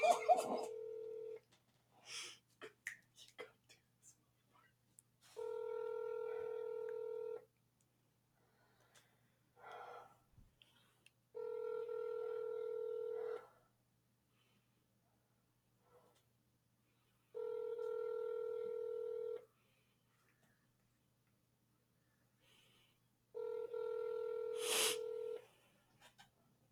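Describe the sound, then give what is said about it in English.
A phone call rings out unanswered: after brief dialing sounds, five steady, evenly spaced ringback tones buzz in a low hum, with faint breathing and sniffs in the gaps. “I hate when they don't answer because then all my nerves are going and then they don't answer, so I have to go back down to not nerves and then to go not right nerves.”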